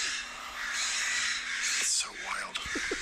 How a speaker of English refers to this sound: There's like four different types of birds screaming.